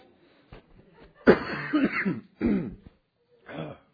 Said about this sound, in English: Told Bonnie I didn't think I was going to cough through this morning service, but I think I am.